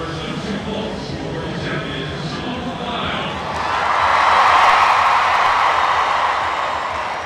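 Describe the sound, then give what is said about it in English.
A huge arena crowd of 20,815 people at the U.S. Olympic gymnastics trials roars, the steady din swelling into a louder wave of wild cheering about halfway through and staying loud to the end. “And it wasn't just in the beginning introductions that the crowd went wild.”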